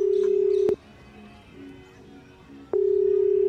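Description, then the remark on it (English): A loud, steady electronic phone tone hums as a phone's speed dial is hit with a nose to call Chloe Lovejoy; it cuts off with a sharp click, leaves a quiet gap of about two seconds with faint background murmur, then clicks back on and continues. “Let me just wiggle this phone out of my pocket, hit the speed dial with my nose, and go.”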